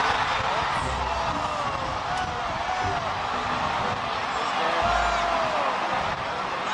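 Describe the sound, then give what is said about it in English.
A dense outdoor crowd at the 1997 Macy's Thanksgiving Parade roars and shrieks in delight as float handlers and police struggle in high winds to control a massive balloon float, high excited screams rising over a thick wash of voices, loud and steady throughout without a break. “You can hear the crowd screaming in delight as the float handlers and police tried to get Barney under control.”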